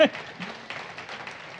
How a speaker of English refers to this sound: And for those in the Great Hall, can we give them a round of applause and let them know that they're part of us too and we love them?